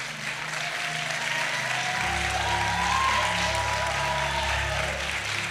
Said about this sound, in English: That's a mighty low cheer for a mighty big position.